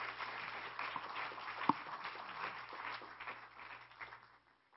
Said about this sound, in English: Would you give these young people a round of applause and tell them how much you love and appreciate them?